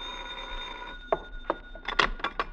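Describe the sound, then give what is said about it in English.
A telephone bell rings in a museum, a steady metallic ringing tone that grows busier toward the end with a quick series of rattling strikes. No one speaks. “You hurry inside and wait for her call. The hours drag by, and then...”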